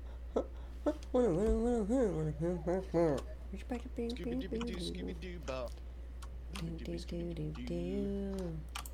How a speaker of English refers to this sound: I almost had in sync mouse clicks with someone.